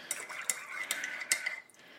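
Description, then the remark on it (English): Metal pots and utensils clatter and clank as someone switches to a bigger pot while cooking, with several sharp knocks and scraping rattles over about two seconds, then the noise fades out. No one speaks. “I'm going to a bigger pot. We're going to need a bigger pot.”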